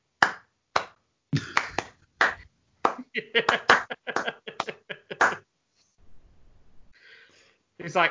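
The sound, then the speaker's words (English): Sparse golf claps from the audience of a stage performance: a few scattered hand claps start slowly, then pick up into a brief, uneven patter of light applause from a small handful of people before trailing off into near silence. “No, golf claps.”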